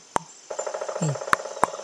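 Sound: voice imitating a woodpecker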